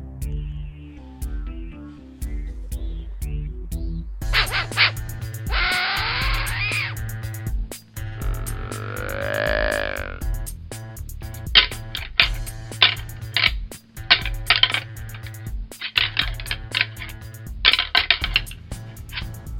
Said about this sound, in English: I know you heard it, because I just heard it too. That's right, it's the deer call, and that means we're out of time.